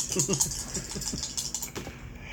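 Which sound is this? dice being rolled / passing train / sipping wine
dice being rolled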